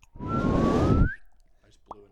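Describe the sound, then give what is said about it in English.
A single loud censor-style 'boop' tone, used in place of a censor beep over something inappropriate said, lasts about a second, its pitch sliding slightly upward over a harsh, buzzy burst, then cuts off into near silence with a faint voice. “Like, instead of going beep, it goes like boop.”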